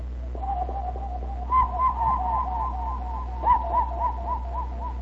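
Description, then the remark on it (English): Someone whistles an imitation of a cuckoo, a steady string of soft two-note calls repeated over and over at a mid pitch, with a constant low hum underneath and no talking. “Cuckoo Whistle”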